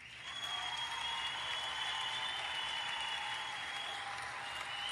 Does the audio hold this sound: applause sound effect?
yes